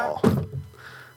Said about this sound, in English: Okay. Okay, I'm sorry. I knocked my microphone over from spookiness.